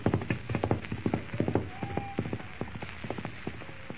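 A wild, unbroken horse gallops into the darkness with a rider bound to its saddle, rapid, uneven hoofbeats pounding steadily, loud at first, then easing slightly as the horse moves off. A brief high tone rings out midway.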